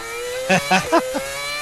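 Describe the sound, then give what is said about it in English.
A Red Bull Racing Formula One racing car engine ringtone: a steady, high whining engine note broken by four quick revving bursts, the first three loudest, with the last fading, and no talking. “That is a Red Bull Racing Formula One car.”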